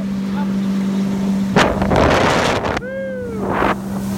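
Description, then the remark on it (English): A small motorboat's engine drones steadily while the boat moves across the Amazon River on a day trip, with gusts of wind buffeting the microphone and bursts of rushing spray; a brief wavering tonal sound rises partway through. “You know, some of my favorite moments was just us wailing down the Amazon, and because there were smaller motorboats attached to the big boat, and during the day we'd do day trips.”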